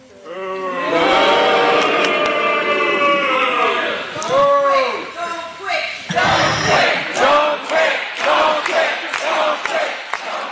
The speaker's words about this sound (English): Michigan primary was yesterday, and Nikki Haley, boy, she got after the RNC and drew this chant from the sparse crowd.